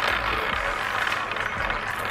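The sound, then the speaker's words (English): A prize wheel spins with a rapid, steady rattle of ratcheting clicks, loud and continuous throughout, heard on its own without any talking, before it stops at number five. “Spin it, cat. Spun it, cat.”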